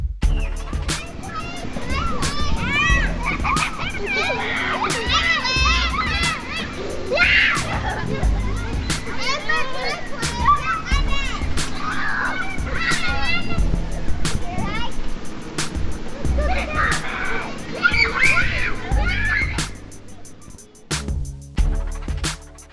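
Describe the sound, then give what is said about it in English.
Children from Hoover Elementary School playing and shouting on their brand new playground: a steady, busy crowd of high, overlapping voices with squeals, laughter and scattered sharp knocks, staying loud throughout before thinning out in the last few seconds. “And now a moment of hella joy from the kids at Hoover Elementary School and their brand new playground.”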